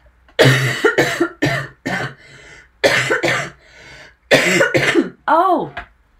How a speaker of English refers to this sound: Cough warning.